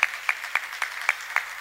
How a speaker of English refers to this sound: Shall we do it for her? Round of applause.